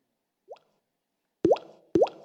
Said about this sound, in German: Er hört Regentröpfli. Und dann kommen die ersten Tröpfchen.